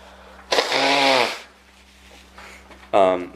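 Someone blows their nose hard: a long, loud, buzzy honking blast, a brief lull with faint snuffling, then a second sharp blast starting. A low steady hum runs underneath.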